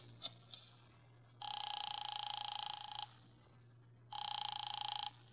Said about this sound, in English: I drove down to the document research laboratory on Vanderbilt and got such a shock that I grabbed the office phone and dialed Wolfe at once.